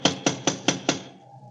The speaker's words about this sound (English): They don't seem to answer, do they? Try knocking again.